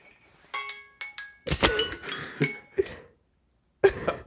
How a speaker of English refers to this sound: That was the second time today that my alarm went off on my phone and I did not recognize it and called someone else out on it.